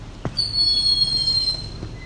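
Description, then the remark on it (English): An eastern wood-pewee gives one clear, drawn-out whistled call, thin and high, over a low outdoor rumble, with a soft knock just before it and another shortly after. “That's an eastern woodpewee calling.”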